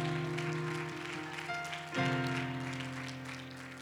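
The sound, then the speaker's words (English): An audience at a church service claps their hands together in praise to the Lord, a dense, steady patter, while sustained keyboard or organ chords hold underneath and shift to a new chord midway. “One more time, clap your hands unto the Lord and give him praise.”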